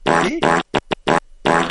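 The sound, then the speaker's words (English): A loud, buzzing fart sound effect, broken into a series of sputtering bursts of uneven length: a long blast, several quick pops, then another drawn-out blurt. No one speaks. “Yeah, here that's the classic fart sound.”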